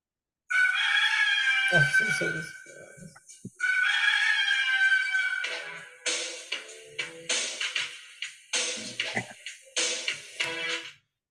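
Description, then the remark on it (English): A rooster crows twice in long, drawn-out, loud calls, followed by a run of short, choppy squawking bursts, for the Red Rooster gimmick, also known as Terry Taylor. “The Red Rooster, also known as Terry Taylor.”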